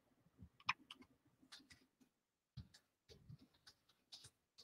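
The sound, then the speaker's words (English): Keys clacking on a computer keyboard in quick, irregular bursts, fairly quiet, with a brief pause midway before the typing resumes, as someone types a Google search for Transformers Earthrise Scorponok. “I'm typing Transformers Earthrise Scorponok.”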